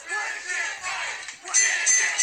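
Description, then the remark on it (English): A large crowd shouts and roars loudly, chanting "midget fight" in repeated surges, with no single voice standing out from the dense, continuous noise. “I love the crowd shouting midget fight.”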